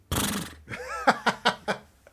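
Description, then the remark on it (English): A horse neigh in an apartment, fairly loud: a breathy snort, then a wavering high whinny that breaks into four quick, fading pulses. “we do have the official Holy Schlodcast horse in my apartment”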